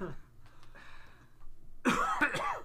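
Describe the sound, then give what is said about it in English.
A loud cough blasts right into the microphone, a harsh burst of two or three quick hacks, preceded by softer breathy throat noises. “Like you coughing into the mic.”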